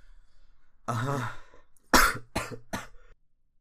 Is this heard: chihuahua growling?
no